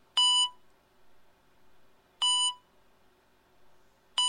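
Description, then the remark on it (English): A hospital heart monitor sound effect played from a phone app beeps steadily, three clear electronic tones spaced about two seconds apart, each short and bright with a quiet pause between, no voices present. “Someone's heartbeat and shit. At the hospital, I hear that.”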